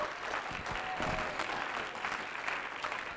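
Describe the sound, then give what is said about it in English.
A crowd all over the building claps steadily and densely, a sustained wash of many hands applauding at fairly even loudness with no clear individual rhythm, lasting the whole few seconds. “Come on, clap your hands all over the building.”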